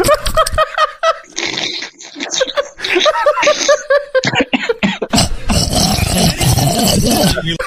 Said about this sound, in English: I made myself cough there.